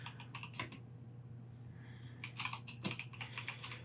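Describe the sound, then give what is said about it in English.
Rapid clacking of keys on a mechanical keyboard as someone looks something up, bursts of clicks with a short pause in the middle, over a low steady hum. “Hopefully my typing isn't that loud. I do have like a mechanical keyboard.”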